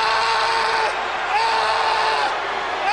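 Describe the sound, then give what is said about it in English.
Shane McMahon lets out a loud, drawn-out scream of pain at a wrestling event in Worcester as his shoulder is attacked, wavering in pitch for several seconds, over a dense wash of roaring crowd noise. “Oh, here in Worcester wants to hear Shane scream.”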